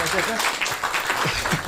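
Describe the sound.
An audience applauds steadily with dense, continuous clapping that fills the space, while voices call out and talk faintly underneath.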